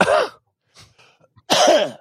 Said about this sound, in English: So do you have to like cough a few times? Yes. No, it's just one good one. One and done, huh?